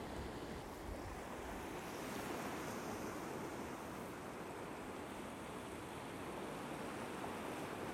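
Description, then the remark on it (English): Steady ocean surf washes continuously along a shore as the sea ebbs, a broad, rushing wash of water with some wind noise, constant throughout, with no voices. “You will notice the sea is ebbing away from you.”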